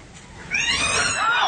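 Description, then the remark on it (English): A startled cat lets out a sudden, loud, drawn-out yowl lasting about a second, its pitch wavering and bending downward, clear over a quiet background. “You ever seen the expression on a cat's face when it's startled?”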